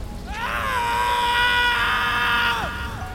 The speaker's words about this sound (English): But a scream from Salvatore cut through the storm's roar.